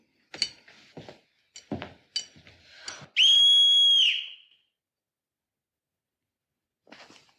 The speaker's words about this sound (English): And then he thinks he can get one up on her by saying, all right, now this is going to be your signal. And he blows on the whistle.